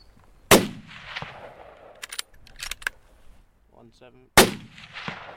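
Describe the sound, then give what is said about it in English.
Two loud, sharp rifle shots at deer about 170 meters away crack about four seconds apart, each followed by a rolling, fading boom, with faint rustling and a few soft clicks in the quiet between them; two deer go down. “Would the gunshot now spook that other herd?”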